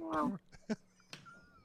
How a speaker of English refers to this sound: Oh, did he meow? Did I hear that? He did meow.